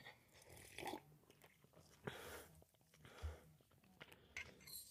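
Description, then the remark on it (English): Several short slurping sips of hot tea, with soft breaths and mouth sounds between them, irregularly spaced and fairly quiet, with no talking. “Just grab it, and I'm going to take a sip of my tea. It's really hot.”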